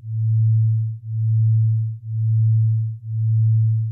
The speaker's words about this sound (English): And that oscillating sound is a binaural beat.